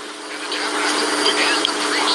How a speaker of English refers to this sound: We're getting a really nice shower right now. I see that. I hear it in the background there. So, can you hear it? Yes. So it's a nice gentle rain and everything.